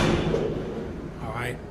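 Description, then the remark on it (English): A heavy, electrically operated steel prison door slams shut with a loud, booming clang that rings and rumbles through a reverberant space, with a brief metallic screech near the end, as guards step in and let it slam. “They step in and they just let it slam shut.”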